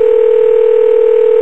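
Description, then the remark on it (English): A steady electronic ringback tone of an unanswered outgoing phone call holds unbroken through the whole moment, loud, with no voices. “It works on the phone, it doesn't work on the computer. They're not answering here either, bastards.”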